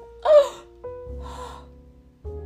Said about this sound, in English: And did horrendous things like put their feet up on Nancy's desk. Oh my gosh. Gasp. Back of your hand to your foreheads, all. Please.